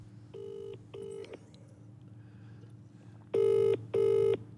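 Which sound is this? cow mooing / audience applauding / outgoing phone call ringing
outgoing phone call ringing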